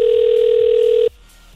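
A loud, steady electronic ringback tone from an outgoing phone call hums for about a second, then cuts off abruptly, leaving faint low background noise and no voices.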